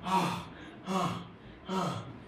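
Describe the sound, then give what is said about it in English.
A voice imitates the heavy panting of a runner who has raced in ahead of two others, three loud, breathy gasps in a steady rhythm, alone with no talking. “And the third one ran and overtook the first two. And came and was panting.”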